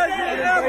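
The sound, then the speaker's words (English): A crowd booing a speaker, a dense, steady wash of overlapping voices held at a fairly even loudness throughout a brief burst under a second long. “Doesn't matter how much they boo you, you are heroes.”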